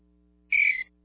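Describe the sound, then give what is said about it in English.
A single short, shrill cricket chirp sound effect, loud, lasting about a third of a second against a quiet low hum, with no talking. “He's probably getting as many crickets as Scotty does.”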